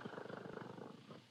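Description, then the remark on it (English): A little female kitten purring softly and steadily, a quiet rumble of rapid rhythmic pulses with no voices over it. “Listen to her purr. So little and soft.”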